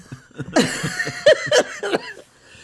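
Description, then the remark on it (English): A loud burst of coughing from a person: several harsh, breathy hacks in quick, uneven succession over a couple of seconds, with no talking. “Oh, broke a rule. I coughed.”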